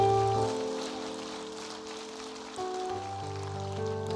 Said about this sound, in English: And so we thank God for the person and the personality of our senior pastor, Dr. D.Z. Cofield. Can we give him just a round of applause?